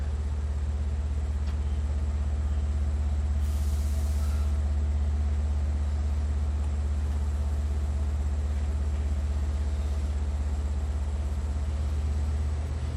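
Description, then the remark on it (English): A passing train makes a loud, steady low rumble that continues without pause, with a short hissing burst partway through. Nobody speaks. “So we have this train coming, and maybe that causes some upset.”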